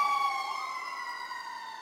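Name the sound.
emergency vehicle siren passing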